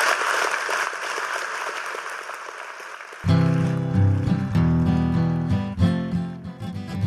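A round of applause, a dense, steady patter of many hands clapping, runs for a few seconds before loud music with a strong low-pitched tone swells in over the fading clapping.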